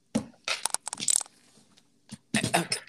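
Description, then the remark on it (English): A smoothie cup lid being pressed shut: sharp, crinkly plastic crunches and snaps in several short bursts, a quiet gap, then a final flurry of crackling. No one speaks. “Let me close my little smoothie.”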